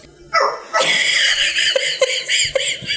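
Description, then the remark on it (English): A small dog named Sasha lets out a string of high, squeaky yaps with a chirpy, electronic-sounding quality like the Galaga arcade game, fairly loud, the short calls tumbling over each other in quick succession. “She can't even bark. She sounds like a Galaga. Little machine.”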